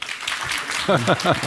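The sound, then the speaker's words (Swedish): A short burst of audience clapping, a dense crackle of many hands as audience members who answer 'don't know' applaud, quickly overtaken by a person speaking. “Ni som inte vet, applådera nu.”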